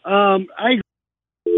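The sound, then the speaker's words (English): A voice is abruptly cut off, followed by about half a second of dead silence, then a steady, loud telephone dial tone starts up, as on a dropped call. “We just lost him”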